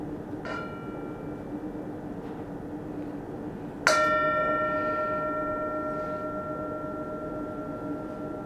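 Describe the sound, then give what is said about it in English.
A meditation bell is struck once, clear, and its bright metallic tone hums on, slowly fading over several seconds. A fainter ringing from an earlier strike lingers before it. “So here, I'll ring the bell one last time.”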